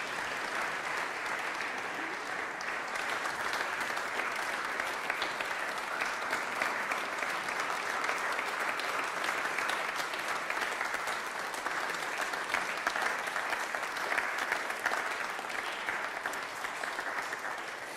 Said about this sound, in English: And I wonder if, as those are beginning out, we might give them another big round of applause together.